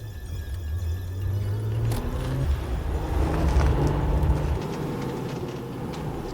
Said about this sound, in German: einen perlgrauen Kleinwagen, einen Fiat, und brauchte auch nicht lange, um die Zündung kurz zu schließen. Einen Moment später rollte er zur Ausfahrt des Parkplatzes.